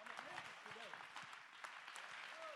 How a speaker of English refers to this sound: Somebody clap your hand and give God the praise.